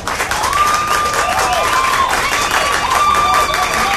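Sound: audience applause and cheering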